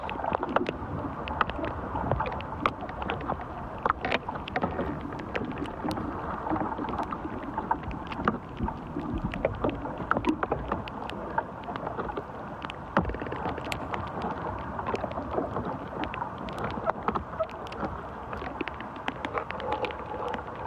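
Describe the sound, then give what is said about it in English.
Tree branches moving in the wind, wood creaking and leaves blowing: a steady low rushing rumble scattered with sharp clicks and creaks that come irregularly throughout, with no voices. “so you can hear the branches moving.”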